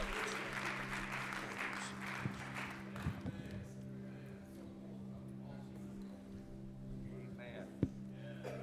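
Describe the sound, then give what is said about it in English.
An audience claps together in appreciation as a family comes forward, a steady, sustained round of applause, a dense patter of many hands with a few sharper claps and a low hum underneath. “If we could have them to come at this time, and let's give them a great big hand clap of appreciation as they come.”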